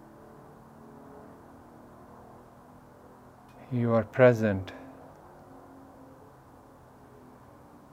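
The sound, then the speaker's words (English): A steady, low rumble of faraway road traffic hums throughout, soft and continuous, while a calm voice speaks briefly in the middle. “Feel the traffic far, far away on the road.”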